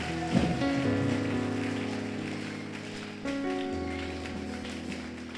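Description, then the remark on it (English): A crowd claps steadily and continuously, a dense wash of applause running under sustained, droning keyboard chords that shift once midway through. “Clap if you don't want Ebola to come to Ghana.”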